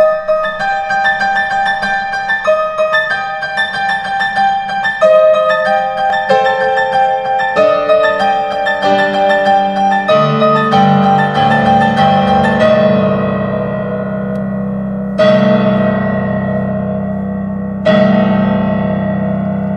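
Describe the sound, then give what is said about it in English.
Solo piano plays a piece called Easter, from a piano suite, evoking Easter bell ringing: dense, clangorous chords in quick repeated patterns like pealing bells, then deep, resonant struck chords that ring out and slowly decay. “Yeah, the first two piano suite, and that actually is called Easter.”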